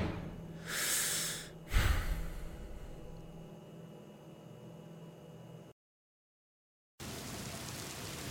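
rain falling

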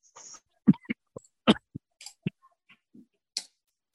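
coughing

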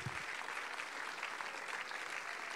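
audience clapping

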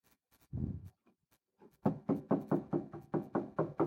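repeated knocking

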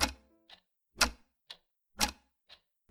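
clock ticking

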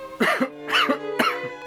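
a person coughing

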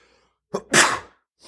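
sneeze

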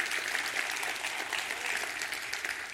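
audience clapping hands

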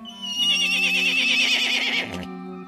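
horse neighing

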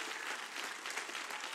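audience clapping hands

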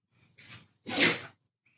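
sneeze

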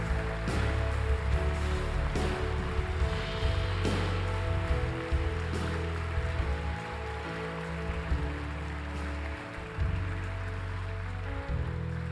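audience clapping hands

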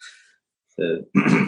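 throat clearing

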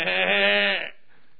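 goat bleating

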